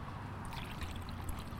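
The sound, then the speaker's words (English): Juice pours into a cup in a soft, steady stream, with faint bubbly splashing. It is quiet and continuous for a moment over a low background hum, with no one speaking. “Likewise, a little later in the meal, he took the juice that they were drinking together, and he poured it out so that they might see.”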